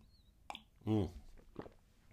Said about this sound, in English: I gotta take a sip of tea right now.